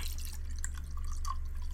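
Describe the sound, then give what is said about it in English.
A soft drink being poured: a steady, gentle splashing with crackly fizz and a few bright droplet blips, over a low constant hum. No one speaks. “Oh, we heard an audio pour.”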